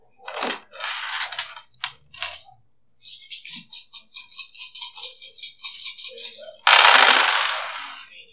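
A handful of six-sided dice, including bone dice, Roman dice and pirate dice, are rolled for weapon damage in a tabletop game. They clatter in a few quick shakes, then tumble in a rapid run of small clicks and finish with a loud, rattling spill. Fairly loud, with no voices.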